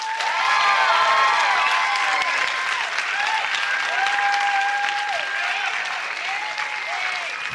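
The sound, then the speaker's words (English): A comedy show audience claps steadily for several seconds to vote that they like cake more than pie, a dense, sustained wash of applause with scattered whoops and cheers rising above it before it gradually tapers. “By round of applause, how many people like cake more than pie?”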